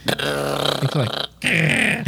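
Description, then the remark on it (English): A voice imitates the rapid haptic vibration of an Apple phone, felt in the fingers when searching for a delete button on a blank screen, with a loud, gravelly, rattling buzz, held for about a second, then a short pause and a second burst. “Okay, so when you're on a blank screen and you're trying to search for a delete button and all your fingers are getting these vibrations, the fast haptic is like...”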